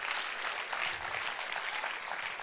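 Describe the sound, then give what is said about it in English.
A crowd claps steadily as a clap of praise to God, many hands producing a dense, continuous wash of applause at an even volume throughout, with no one speaking over it. “Go ahead and give him a clam clap of praise right now.”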